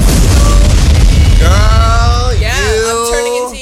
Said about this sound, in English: Explosion.